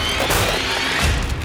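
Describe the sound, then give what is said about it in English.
The windshield of a Plymouth Voyager smashing: a loud, dense burst of crunching, shattering glass noise that fills about a second and a half, with heavy low thumps mixed in and no voices. “Oh, the fucking windshield!”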